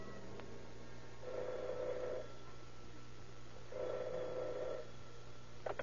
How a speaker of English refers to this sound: The investigation is checkmated until late that night when the operator at detective headquarters receives a strange phone call.